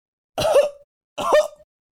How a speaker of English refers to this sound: I'm coughing so I can remember the voice I gave him.